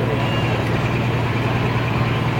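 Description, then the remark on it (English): A loud, steady diesel truck engine in a video from Diesels in Dark Corners rumbles continuously, a deep low-frequency drone with a constant throbbing texture and no pauses. “It'd be kind of hard to farm in that truck, wouldn't it, Mr.”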